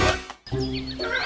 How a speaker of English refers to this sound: It was a beautiful morning. Birds were singing.